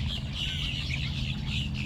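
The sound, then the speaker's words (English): A dense, continuous chorus of calls from a flock of about 1,000 red-winged blackbirds and grackles settling in the reeds of a wetland at dusk, many overlapping chirps and squeaks blending into a steady chatter, with a low rumble of noise from surrounding infrastructure underneath. “To my joy, about 1,000 red-winged blackbirds and grackles flew in from multiple directions and hunkered down in the reeds.”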